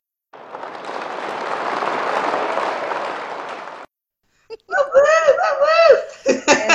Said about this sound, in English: But I have to give you some applause